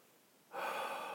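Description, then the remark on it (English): A single deep, airy inhale begins about halfway through after a moment of near silence and is sustained to the end, with no talking. “as I just reminded myself of here, too. There you go. Breathe.”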